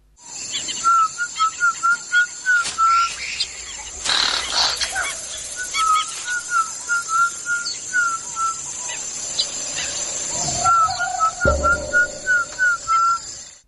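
Whistled speech used while hunting a monkey: rapid runs of short, clear whistled notes come in several bursts with brief pauses between them, loud over a steady background hiss.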